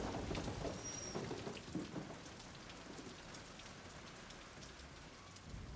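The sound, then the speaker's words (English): A dense hail and thunderstorm patters and drums steadily with low rumbling underneath, the clatter gradually easing and growing quieter as the storm dies down. No one speaks. “So Moses went out of the city from Pharaoh and spread his hands up to Jehovah, and the thunders and the hail began to stop.”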